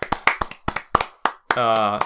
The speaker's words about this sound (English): Yeah. Applause for the people who made this shit.